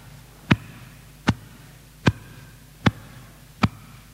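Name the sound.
heartbeat sound effect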